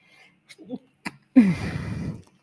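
A few short, catching intakes of breath build up to one loud, explosive sneeze, with a brief voiced tail and no talking.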